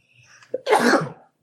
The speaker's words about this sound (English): Gesundheit. Excuse me. Excuse me.